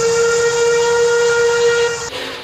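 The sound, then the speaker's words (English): A steam locomotive whistle blows one long, loud, steady note with a bright harmonic tone and airy hiss, cutting off sharply near the end. No voices are heard. “It's amazing to think that we still have these wonderful machines around.”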